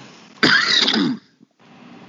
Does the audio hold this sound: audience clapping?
no